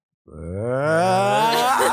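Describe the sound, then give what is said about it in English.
A voice imitates a bomb warning signal with one loud, sustained droning wail that climbs slowly in pitch for nearly two seconds, starting abruptly and holding steady to the end. “I was trying to do a bomb single sound. Bomb signal sound.”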